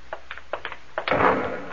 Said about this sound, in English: That came from the ship. Another flare? No, that was an explosion.